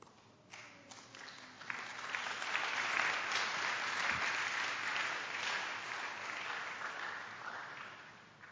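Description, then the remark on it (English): Passengers on a London bus clap steadily together, a dense wash of applause that swells after the first couple of seconds and holds at a moderate level, with no one talking. “Clapping on the London bus.”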